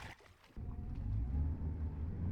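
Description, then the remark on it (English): A motorboat engine surges on after a brief quiet moment, settling into a loud, steady low rumble as the boat pulls a water-skier forward from a crouched start onto his feet, with no voices. “So you stay in the crouched position with your arms straight and your knees bent until the boat pulls you forward onto your feet.”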